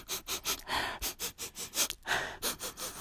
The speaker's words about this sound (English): Why is my nose making that sound? What's in my nose? What's living in there? Do I have a fucking colony of fucking hornets living in there just buzzing around? Just buzzing around.